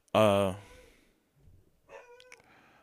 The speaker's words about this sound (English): Sorry if you hear the dogs.